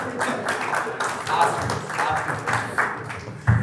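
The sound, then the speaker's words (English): An audience breaks into applause, a steady wash of many hands clapping at once that holds at an even level for a few seconds, with a sharper burst near the end. “You should not be applauding that performance.”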